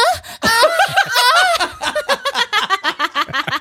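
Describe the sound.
A voice imitates a person's snoring with drawn-out, nasal, wavering snorts, then breaks into quick rhythmic bursts of breathy laughter, fairly loud.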